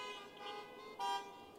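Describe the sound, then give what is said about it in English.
A car horn honks in one long, steady blare, swelling louder briefly near the end before trailing off. No one speaks over it. “And if there's a lady in the car, could you reach over and honk the horn?”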